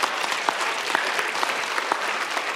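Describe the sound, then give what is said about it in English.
A church audience at Bellwether claps steadily in praise of God, a dense, sustained wash of applause with individual sharp claps poking through, moderately loud and continuous throughout without any talking. “So give him another hand clap.”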